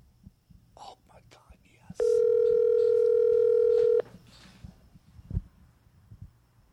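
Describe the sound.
A single loud, steady telephone ringing tone sounds for about two seconds as an outgoing call is placed near midnight, clear, with faint murmuring voices and soft background noise before and after it.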